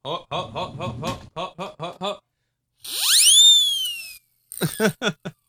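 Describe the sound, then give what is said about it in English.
A person gives a single rising skeptical whistle that swoops upward and holds for about a second, sandwiched between quick bursts of snickering, chuckle-like sounds before and after. “It's a skeptic whistle, folks.”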